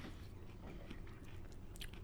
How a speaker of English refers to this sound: So if you hear us munching... Yep. That's what we're crunching.